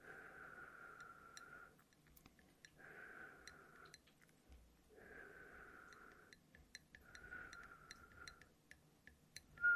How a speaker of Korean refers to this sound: 마이크에 대고 휘파람 소리를 내면은 소리가 아마 굉장히 세게 들어갈 거예요. 그래서 제가 아까 테스트를 해봤는데 오히려 저처럼 휘파람을 못 부는 사람이 내는 이 소리는 좀 자극적이지 않고 괜찮을 것 같더라고요. 한번 해볼게요.